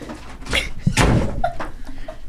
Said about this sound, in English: A door slammed shut.